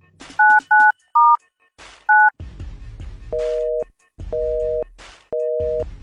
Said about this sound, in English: Busy signal.